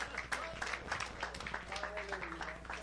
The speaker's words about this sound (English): Go ahead and give God a hand clap.